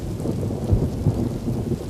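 A thunderstorm: steady rain hisses throughout while deep thunder rumbles low and continuous, swelling in a few heavier rolls. No one speaks.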